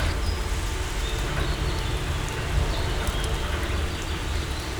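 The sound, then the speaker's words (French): Steady rain falls at Coublanc, a dense, even hiss with a low rumbling patter underneath. A few faint, brief bird calls come through above it. “Et là, il pleut, on observe un comportement intéressant”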